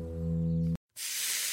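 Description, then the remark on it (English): A steady humming tone cuts off into a brief silence, followed by the loud, bright, continuous hiss of food sizzling on a hot Applebee's skillet. “If you can hear that sizzle, it probably means one thing. You're thinking about Applebee's sizzling skillets.”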